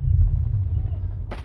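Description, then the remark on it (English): A deep, continuous low rumble of artillery fire rolls throughout at a war front line, then a sharp, bright crack of gunfire bursts in just before the end. “This is a place where the sound of gunfire is the soundtrack to life, where the only certainty is death, and where the only hope is the hope that one day this war will end.”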